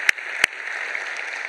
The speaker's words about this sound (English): I would feel much better if we give the Lord a real hand clap because he's the one that's great.